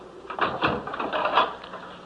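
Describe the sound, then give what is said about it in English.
A courtroom jury-room door being opened: a few short clunks and rattles of the handle and latch, followed by a soft scraping swing, moderately loud with no voices. “you have any questions which prevent you from reaching a verdict, will the foreman please come to the door? when I shall open it.”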